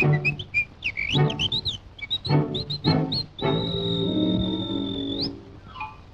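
An old recorded song plays: a cheerful whistled melody and bird-like chirps over a light orchestral backing, ending in a long held whistle note, with no singing yet.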